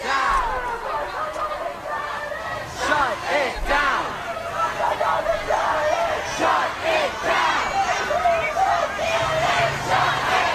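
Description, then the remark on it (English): A large crowd of protesters in New York, arriving and vandalizing police vehicles, shouts and yells continuously, many voices overlapping in loud, raucous chanting and cries that rise and fall without pause, with scattered higher-pitched whoops cutting through the din. “this is audio from the New York Times yesterday when these protesters arrived, vandalized police vehicles, also put Free Gaza and IDF KKK spray painted on the side of police cars.”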